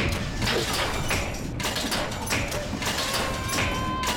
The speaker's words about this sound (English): I'm going to turn the dryer on.